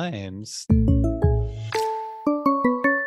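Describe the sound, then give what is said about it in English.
A short, bright run of chime notes rings out clearly, about eight struck tones in a descending then repeating pattern, each sustaining and overlapping, after a brief vocal sound and a soft noise burst. “Those chimes, they're always in good work in order for us”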